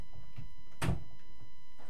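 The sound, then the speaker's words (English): A door is opened with one solid clunk in the middle, with a faint steady hum and no talking. “Open the door for him, would you?”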